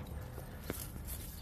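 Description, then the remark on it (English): A few soft, irregular hoof-like thuds of a horse walking, spaced out over a steady outdoor hiss, fairly quiet, with no talking. “She is, how about the handiest horse I have on hand at the moment.”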